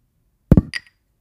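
A drinking glass held in someone's hand bumps against a microphone in an attempted cheers: a dull, heavy knock followed quickly by a brighter, ringing clink that fades fast, with no voices during the sound.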